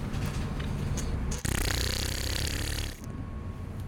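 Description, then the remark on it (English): A voice imitates a fart with a sustained, buzzing rasp that sounds like a drill, loud, intensifying mid-way for about a second and a half before easing back into steady rumbling. “I made a good fart sound that sounds like drilling.”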